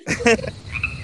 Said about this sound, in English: Ooh. I hear crickets in the back,